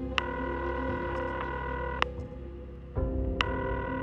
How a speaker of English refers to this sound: He dialed Brynn's number and waited as the phone rang and rang.